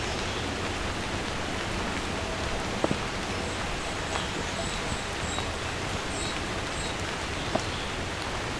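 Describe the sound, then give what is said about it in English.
Steady rain patters down continuously, a dense even hiss with occasional sharper drops, and faint bird chirps are barely audible high above the wash. “Rain and other birds can obscure what exact song is happening.”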